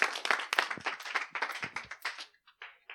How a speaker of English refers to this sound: All right, everybody stand to your feet. Give the Lord a hand clap, praise. Y'all got awful quiet.